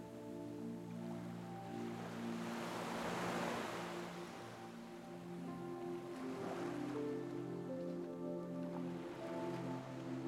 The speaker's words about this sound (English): And as you gently start walking towards the shoreline, you can hear the waves gently getting louder. And you start to see the difference between the sand and where the waves are breaking.